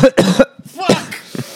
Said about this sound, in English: I have many years of microphone experience. My co-host has zero, and he coughs directly into the mic.